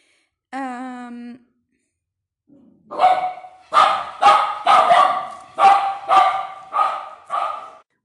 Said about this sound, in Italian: Ok, allora c'è stata una piccola interruzione dovuta al fatto che i cani abbaiano così senza una valida ragione.